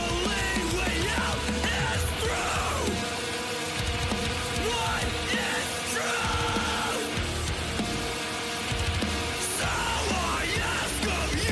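Loud, dense music with harsh screamed male vocals, clearly enunciated, over pounding, continuous drums and distorted instruments, sustained at a steady high intensity throughout.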